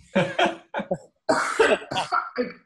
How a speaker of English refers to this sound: Oh, she's coughing over there. The air's thick in Australia.